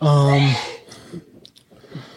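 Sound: sneeze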